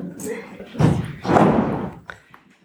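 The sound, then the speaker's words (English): A door bangs open with a heavy thud, followed by a longer rattling, knocking impact as it swings, then a few quieter clunks as it settles. “Oh, the door is all opens, yeah.”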